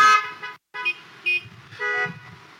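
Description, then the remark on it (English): Several car horns honk at a drive-in church service in overlapping bursts, a long blare, a short gap, then more toots and sustained blasts from multiple vehicles, with a low engine rumble underneath. “Every one of you honking that horn, next time we get to meet in the sanctuary, I expect you to shout hallelujah a time or three, okay?”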